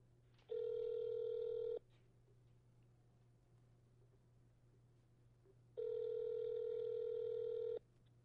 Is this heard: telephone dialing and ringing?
yes